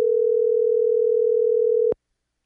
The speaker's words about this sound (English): Let's see if this person will answer the phone. Hold on a minute. Making a phone call.